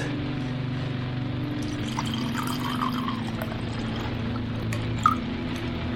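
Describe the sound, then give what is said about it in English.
Organic 2020 red wine pours into a glass with a soft, steady gurgle over a low background hum, followed by a brief faint clink near the end. No one speaks. “I'm gonna pour one out for us.”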